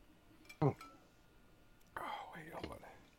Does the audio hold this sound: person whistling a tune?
no